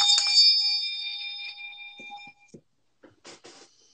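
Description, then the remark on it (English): A desk bell in an office is struck once as a cue to pause and breathe, bright, its clear ringing tone slowly fading over about two seconds, followed by a few faint rustling noises. “When I'm stressed, right, I have this bell, like, as you can see, it's in my office.”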